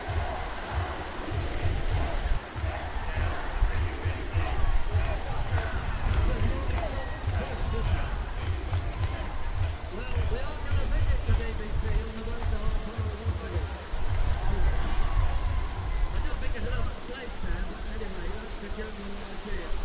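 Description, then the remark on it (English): A crowd of protesters on the steps below the National Gallery and up toward the column makes a steady, blurred murmur of many overlapping voices, no single words standing out, over a constant low rumble that runs for the whole stretch without pause. “This is a Piers Corbyn, by the way, just staring and doing below the National Gallery, and quite a crowd on the steps there, and in the bit running up to the column, so you can kind of hear it just about.”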